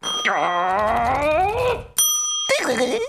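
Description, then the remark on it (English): A small service bell is struck twice to test it, its bright ringing tone lingering between hits, while a wavering, moaning voice drones loudly over it. “stop ringing this bell.”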